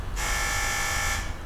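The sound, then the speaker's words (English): A single sustained electric door buzzer, sounding as someone arrives at the door of a flat in the middle of Glasgow, rings for about a second, a harsh, steady rasping tone with rich overtones that starts and stops abruptly over a low background rumble. “So someone's just arrived at the door.”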